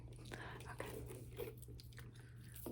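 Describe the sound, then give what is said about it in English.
Wet gum chewing with soft smacking and clicking mouth sounds repeating in an irregular rhythm, over a steady low hum. “Oh yeah, here's another sound. I've been chewing gum.”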